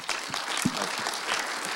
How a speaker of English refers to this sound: And I'll tell you what, you know, we've not been coming around shaking hands. I'm not going to do it this morning either, but let's clap this morning.